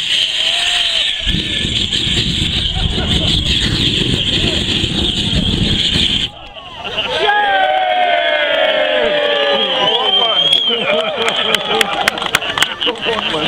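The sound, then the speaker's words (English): A Turbonique rocket's exhaust flame fires a loud, steady roaring blast for about five seconds to light a bonfire at the 2013 All British Rally motorcycle event, then cuts off abruptly as a crowd breaks into excited cheering and shouting. “Which is apparently a giant party, as the only video I could find of this thing was someone using the exhaust flame to light a bonfire.”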